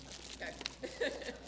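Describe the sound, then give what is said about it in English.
Rustling crinkle of tissue paper being handled as a gift is opened, with a few sharper crackles standing out from a steady papery hiss over about a second and a half. “And there's some, like, little tissue paper that was supposed to be made pretty in here.”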